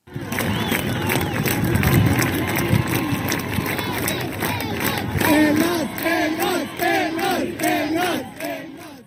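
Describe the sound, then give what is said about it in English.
A dense crowd roars and chants loudly and continuously, with rising shouted voices and rhythmic cheering swelling in waves over about nine seconds, greeting Iranian competitive rock climber Elnaz Rakabi on her return to Tehran, Iran. “And when she returned to Tehran this week, she was greeted by a cheering crowd.”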